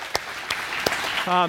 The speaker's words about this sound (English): I just want to acknowledge all the teachers and thank you. It's been a tough few years with being a teacher. Let's give our teachers a round of applause.